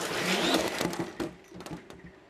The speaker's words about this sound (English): So when the Zipline drone shoots off the launcher, it's doing 0 to 60 miles an hour in 0.8 seconds.